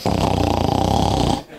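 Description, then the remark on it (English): A single loud, rattling snore drawn out for over a second, harsh with a rapid fluttering buzz, then cutting off abruptly into quiet. “For me, it was my dad snoring.”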